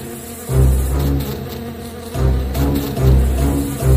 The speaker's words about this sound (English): When she saw that Dorothy and her friends were approaching her castle, she called out her giant bees. Sting bees, intruders!